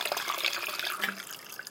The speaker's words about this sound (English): Oh, fuck, I'm sorry, I'm gonna fucking refill my water bottle. I don't know if I can hear that.